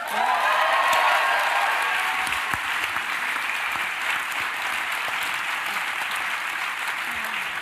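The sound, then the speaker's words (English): Sustained audience applause, a dense steady wash of many hands clapping for several seconds, loud at first and easing slightly, with a few faint cheers mixed in. “Well, I guess they liked the episode.”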